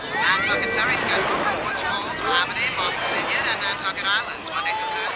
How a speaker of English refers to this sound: Things start out great. The crowd is having a lovely day at the beach. There's a kid. There's people running into the water. You hear a radio announcer. It sounds like a transistor radio is playing on the beach.